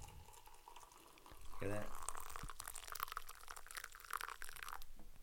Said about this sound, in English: I put the tea bag in the cup and never poured the water over it. Hopefully this water's still hot. Yep, there it is. It's still steaming.